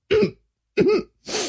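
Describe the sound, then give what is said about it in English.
Three harsh coughs in quick succession after inhaling a little coffee while taking a sip, the first two throaty and hacking, the last a rougher, breathier burst, with brief silences between and no talking. “I inhaled a little bit of coffee when I took a sip just now.”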